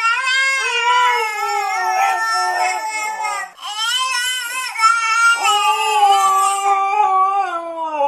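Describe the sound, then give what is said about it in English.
A husky howls in long, wavering, rising and falling tones while a baby wails along in a similar pitch, the baby and the husky imitating each other; the two voices overlap closely and loudly, with a brief pause midway. “And now for your listening pleasure, a baby and a husky imitating each other.”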